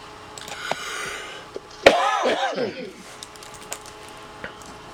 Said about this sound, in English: I'm sorry, I coughed.